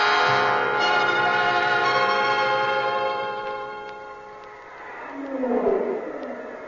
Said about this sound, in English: Look at those brutes come roaring into that big cage.